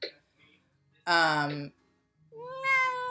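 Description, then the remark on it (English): A male pet cat named Beelzebub, wanting to sit on a lap, meows twice: a loud, strained, harmonic-rich cry followed by a rising, drawn-out second meow, with faint noise in the gaps between. “Yeah, you hear that, puppy? Is it new time? Is it mommy time? No, he wants to sit on my lap.”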